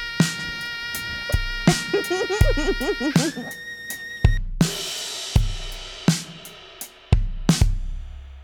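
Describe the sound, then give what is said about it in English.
A high, thin mosquito-like buzzing tone whines over a funky acid-jazz groove, with sharp percussive hits thumping at a steady beat and wavering pitch slides in the first few seconds. “Now do you see why I called it mosquito?”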